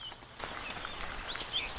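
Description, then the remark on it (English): A dark gray mimic thrush with a black head and black tail, out in the open on a shrub, sings its composite song of imitated sounds in a few faint, high, scratchy chirps and short whistled phrases, scattered irregularly over steady background hiss. “It's gray, dark gray all over with a black head and a black tail, and it's singing that weird composite song, which is sounds it hears, and then it tries to reproduce them.”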